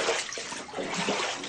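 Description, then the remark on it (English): Floodwater rushes and splashes in a steady, loud, hissing flow, with churning surges rising and falling throughout, inundating a New York City bus as the remnants of Hurricane Ida dump heavy rain. No voices are heard. “Water inundating a New York City bus and all over the region.”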